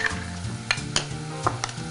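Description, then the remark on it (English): A utensil scrapes and clicks against a bowl while stirring goat cheese with salt, pepper and extra virgin olive oil into a smooth, creamy mixture, with several sharp taps at irregular intervals over a soft, steady scraping. No one speaks. “So I'm just gonna start to work these ingredients just until we have a nice, smooth, creamy goat cheese mix.”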